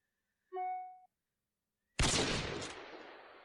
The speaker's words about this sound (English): That was a beep and a gunshot.